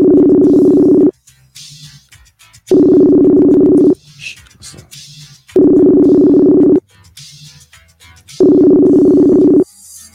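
A phone call being redialed rings out with four evenly spaced ringback tones, each a steady mid-pitched buzzing hum lasting over a second, separated by quieter gaps of faint background noise.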